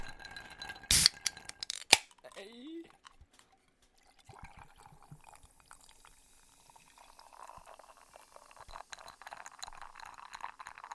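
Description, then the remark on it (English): Coffee sodas, lemon-and-thyme and strawberry-and-lime flavored, are poured over ice: a couple of sharp cracks, a brief rising gurgle, then a long, steady fizzing pour with crackling ice and bubbles, with no voices. “We're gonna pour these over ice and taste them.”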